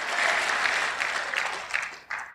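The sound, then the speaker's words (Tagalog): An audience claps together in a dense, steady burst of applause that holds for a couple of seconds, then thins out with a few last scattered claps. “Ngayon lang pumalakpak mga tao rito.”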